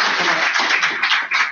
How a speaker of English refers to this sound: So everybody, could you please give a round of applause for Sheriff Leonard?